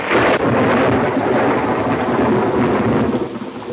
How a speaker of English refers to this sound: Are you afraid of thunder? Oh, no. Just the noise.